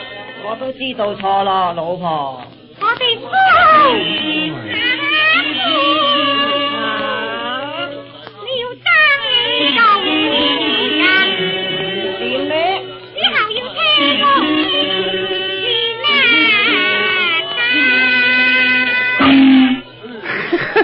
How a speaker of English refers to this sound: How come they have an orchestra playing at 9 o'clock in the morning? Well, you forget you're living in a modern age, my friend. That music comes from a record. And it can go back there for all I care.